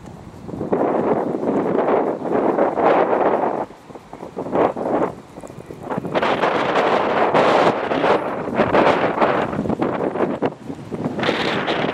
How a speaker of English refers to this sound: Sorry about the wind.